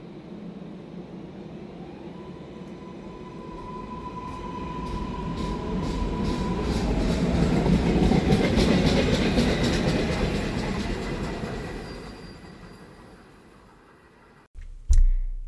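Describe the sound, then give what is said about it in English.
A train bound for Creek Station rumbles along the rails, its steady roar and clacking swelling louder as it passes by, then fading away before the sound cuts off abruptly. A faint whine rides over it early on. “This train is bound to Creek Station.”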